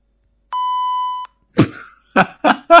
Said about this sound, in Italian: Vai a partire un bip.